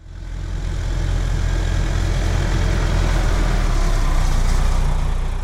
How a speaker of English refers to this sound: The story opens in the fields of a giant farm. A steam tractor chugs along while men toil in the fields with hoes and scythes.